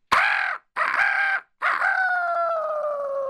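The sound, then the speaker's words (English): A rooster crows loudly in the morning, a full cock-a-doodle-doo in three bursts with the last note stretched long and sliding down, with no voices around it. “And in the morning, the rooster crowed.”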